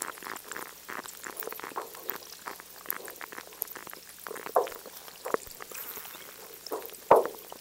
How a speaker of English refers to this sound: Listen to the Canada Glacier in the McMurdo Dry Valley area of Antarctica. It's a small polar glacier that towers over a lake, and as it melts, the water trickles down and the ice creaks.